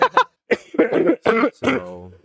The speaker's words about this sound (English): You know, that's why I'm coughing right now. I just had a hard cry y'all.